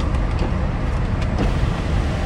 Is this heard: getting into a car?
yes